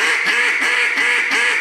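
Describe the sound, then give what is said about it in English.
Raspy hen quacks blown on a duck call, made by opening the throat up while keeping the same pressure and push, about four loud, buzzy notes in a quick, steady rhythm, with no talking. “But I'll get more rasp by opening my throat up. I can get real raspy.”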